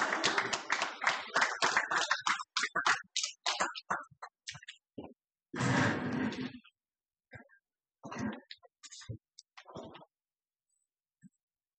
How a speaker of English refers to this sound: Give him a hand clap as he comes.